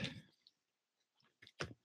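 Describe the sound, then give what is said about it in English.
Scratchy rustling from an external phone microphone: a noisy burst at the start, then near-silence, then two sharp handling bumps near the end, with no speech. “Sorry about that little rustling.”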